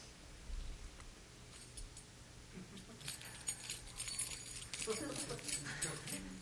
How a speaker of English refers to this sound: Now it's just to jiggle keys around him.